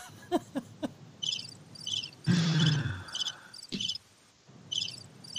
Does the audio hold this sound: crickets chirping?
yes